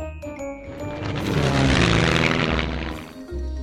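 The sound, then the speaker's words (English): A child's voice imitates an airplane engine with a steady, buzzing drone that swells louder in the middle and eases off toward the end, fairly loud. “that's a really good airplane noise.”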